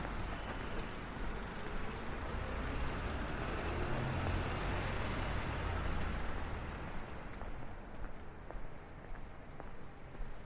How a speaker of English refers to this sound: So here we are in Smithson Plaza, and finally the roar of the traffic has gone down just a little bit.